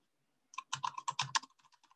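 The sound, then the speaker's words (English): Rapid keyboard typing while looking up the US population, a quick run of crisp clicks in a burst that tapers into a few lighter, spaced taps. Clear, with no one talking. “If you can't hear that, I'm typing it.”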